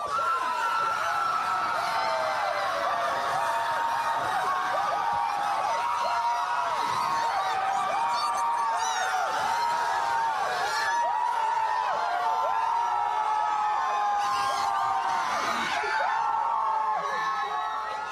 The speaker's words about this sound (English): There's a huge crowd gathering here, some celebrating, some going crazy.